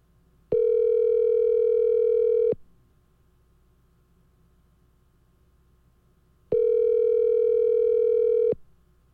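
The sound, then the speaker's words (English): A telephone ringback tone sounds twice on the line, each steady buzzing ring lasting about two seconds with a long pause between, then the call goes quiet as the person called picks up and hangs up. No one speaks. “Most people just let it go to voicemail, but he wants you to know that he got it, so he picks it up and hangs it up. Did you hear that?”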